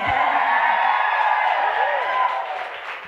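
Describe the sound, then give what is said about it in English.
A live audience at the Dear Mom Conference cheers and whoops steadily for about three seconds, a loud, dense wash of voices with scattered high shouts, tapering slightly at the end. “So friends, welcome to the Lucky Few podcast live. You can cheer again.”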